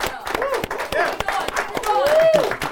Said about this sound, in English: Y'all, round of applause. Yeah.